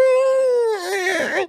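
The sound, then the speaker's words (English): A voice imitates a balloon slowly leaking air: a loud, steady, high squeal that starts to waver and warble, breaking into a wobbly, raspy squeak before cutting off. “It's just going to be a nice slow little leak, making that awful sound that balloons do.”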